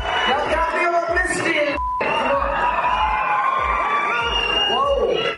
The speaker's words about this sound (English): It was clear the crowd here was very much Team Chris. They greeted him with two standing ovations as he took the stage. It took him several minutes to actually quiet everybody down and get ready for the show.